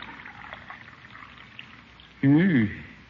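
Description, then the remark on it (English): Coffee is poured softly and steadily into a cup for a couple of seconds, then a brief, loud voice breaks in near the end. “Let me pour your coffee”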